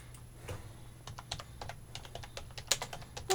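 Rapid, irregular clicking of keys on a computer keyboard, moderately loud, with a steady low hum underneath and no voices, as someone looks up information on the film Welcome to Me.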